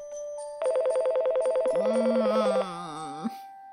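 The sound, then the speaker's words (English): A telephone rings loudly with a fast electronic warbling trill for about two seconds. A low groaning, voice-like hum joins partway through and slides on briefly after the ringing stops. “Brr. Brr. Get the phone.”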